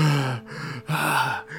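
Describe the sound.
A voice acts out a coughing, panting park ranger: breathless gasping and coughing, three loud, raspy bursts in quick succession with short pauses between, strained, like someone struggling to catch their breath.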